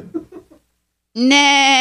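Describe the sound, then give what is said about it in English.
After a few soft murmured syllables and a short pause, a person lets out one loud, sustained, nasal horse neigh imitation that holds steady until the end. “That's not what a horse really sounds like.”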